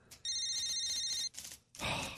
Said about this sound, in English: Hold on, I got a phone call coming in. I got to take this.